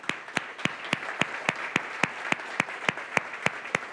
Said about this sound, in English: What about our military? If you've actually served or are currently serving in the military, would you just stand up for a moment? We have anybody? Can we just clap for...